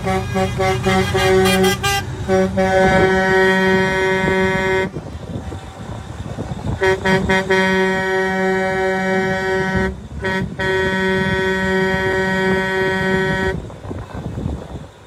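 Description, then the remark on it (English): Busy street traffic with many cars, car horns blaring in long, overlapping blasts, pausing briefly then resuming, over a steady rumble of engines. “There's a lot of cars here, so we're gonna.”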